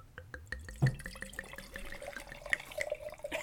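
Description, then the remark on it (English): Mead glugging steadily out of a bottle as it is poured at Meadfest, a quick run of rhythmic gulping pulses with a wet splash underneath, moderately loud, with no talking. “I want to get a nice glug glug glug hunch.”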